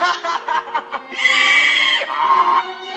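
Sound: donkey braying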